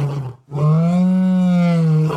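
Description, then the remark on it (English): A mighty roar of a Minotaur standing at least 8 foot tall in the center of a maze room bellows, loud and deep, a short growl breaking off before one long, sustained, rumbling bellow that holds steady for over a second with no talking. “As you approach the center of the room. Joe, Sarah. There is a mighty roar.”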